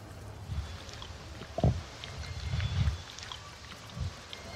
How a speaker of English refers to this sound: we get audio of him complaining about the curry he's having for lunch with these goddamn mouth sounds. I swear to God, Netflix, how dare you? At one point, he literally takes audio of himself chewing.